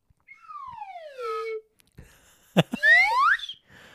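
A slide whistle plays a long falling swoop, then after a short knock, a quick rising glide with a bright, reedy tone. Both slides are fairly loud and there is no talking.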